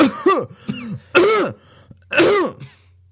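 Four harsh, hacking coughs from smoking a joint burst out loud in an uneven rhythm, with short gasping pauses between them and no talking.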